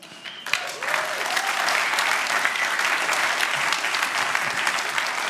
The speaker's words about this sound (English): Thanks, everybody. That was really nice. I imagine I'll probably have an opportunity to speak from time to time. And so every time I get up, I expect that kind of round of applause. That would be that'd be awesome.